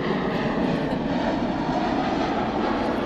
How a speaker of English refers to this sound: Guys, don't worry. That's not the roaring of a sea monster. A plane we're just... We're on flight path.